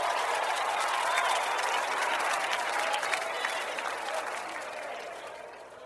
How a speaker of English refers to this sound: Some of these people you see running all over the church and jumping and clapping and screaming, you don't know what they're praising God about.